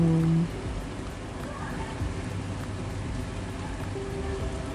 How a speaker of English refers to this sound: I personally can hear the rain. I don't know if you guys can. There's a bit of thunder.